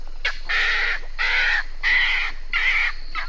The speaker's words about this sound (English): Now, I hear that when it comes to chirping or tweeting, snowy egrets are pretty silent birds, but they do make sounds when they're startled.